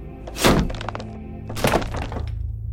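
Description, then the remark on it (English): Two solid hammer blows land on wooden floor planks about a second apart, each a sharp woody thunk with a brief cracking ring, followed by a low steady background hum. “What a nifty little hammer.”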